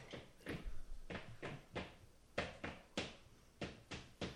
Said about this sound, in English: I'm just seeing how hard I have to stomp for it to pick up.